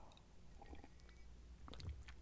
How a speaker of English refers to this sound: Hang on, let me take a sip of my tea. It's 11:57 and I just woke up an hour ago, so this is my morning tea.